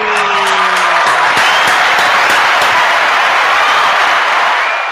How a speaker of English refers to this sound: That round of applause was for my foofy hair. I got foofy hair tonight.